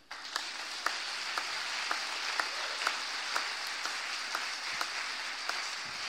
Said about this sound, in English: Amen. Give him a clap and sit down.